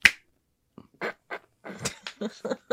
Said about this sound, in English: I'm not gonna clap, I'm gonna snap.